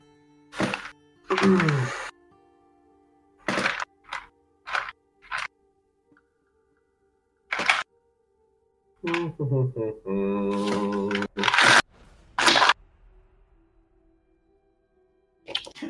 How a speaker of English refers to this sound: He's going. He's doing it. I love how you hear all of the dice. He's got a bin. Special dice. I had to find the D4s. They're at the bottom because I never use them.